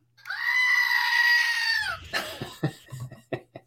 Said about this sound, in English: that's a screaming goat moment right there, buddy.